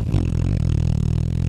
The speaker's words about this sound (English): Big fat fart noise for Dawson Knox.